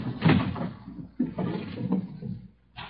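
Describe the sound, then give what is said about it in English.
A kitchen drawer slides open with a thud, followed by clattering and shuffling as someone rummages through it looking for big paper bags, in a few loud bursts with a brief pause between. “Sound like you were taking the kitchen apart.”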